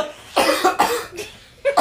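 Forceful, harsh coughing to clear the throat: a rapid series of about four raspy bursts, the first few hacking together before a short pause and one last cough.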